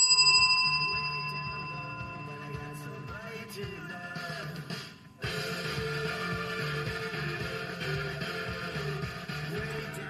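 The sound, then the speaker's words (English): A bell rings out with a bright, sustained metallic tone that slowly decays, then is struck again midway, its shimmering overtones lingering over a low background hum with no talking. “And no, we will not hear from Chicken, but we will ring the bell.”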